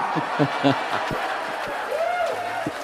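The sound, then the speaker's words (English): A small crowd of people in the room cheers and hollers together, a steady wash of mixed voices with short shouted bursts and a rising, falling whoop near the end. “That was actually us cheering. That was that was the room.”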